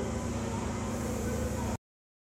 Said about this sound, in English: Oh, sorry about that. It's a bit windy down there,